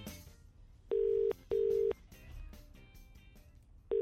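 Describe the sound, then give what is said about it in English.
A phone ringback tone on an outgoing call to a radio prize winner: a steady, clear double ring, two short tones close together, a pause, then the next ring beginning, over faint background hum. “Will they answer their phone with the correct phrase.”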